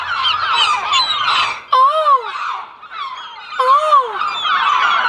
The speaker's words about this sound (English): Oh! I'm gonna kill those damn birds.